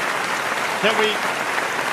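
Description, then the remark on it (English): A crowd claps steadily throughout, a dense, continuous wash of applause at even loudness, with a brief vocal sound rising faintly in the middle. “Can we please stop the clapping? Can we stop the goddamn clapping?”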